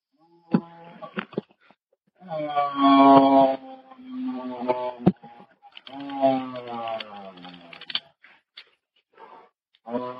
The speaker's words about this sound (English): The dispatcher recognized the sound as agonal breathing and knew that someone was dying on the other end of the line.